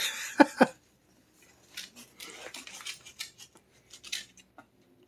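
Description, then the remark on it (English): A knife slits open a paper envelope bearing an official wax seal, opened so as not to break the seal: two sharp clicks, then a run of dry, uneven scraping and rustling strokes as the blade works through the paper, with no voices. “Slices his wrist. With a dull X-Acto knife.”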